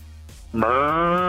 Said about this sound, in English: Oh, this cow has wandered into my living room again.